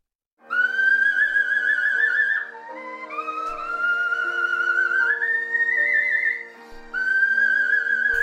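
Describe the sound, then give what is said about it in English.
A woman whistles a warbling melody, holding long vibrato-laden notes that climb in steps, with a brief dip in the middle before the tune resumes loudly. No talking. “Well, this is the kind of whistling she does.”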